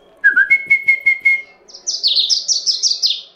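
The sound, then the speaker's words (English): Caged birds in a club chirp with no voices: a quick run of bright, evenly spaced whistled notes, then a faster stream of higher, trilling chirps that repeat for a couple of seconds. “I just look inside of a mind like I look inside one of these bird cages.”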